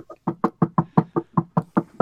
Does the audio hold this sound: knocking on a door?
yes